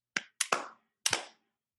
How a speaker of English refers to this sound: And then at the end, you're going to clap 3 times.